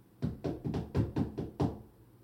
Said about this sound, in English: After everybody's decompressed, Hope hears a knock at our door.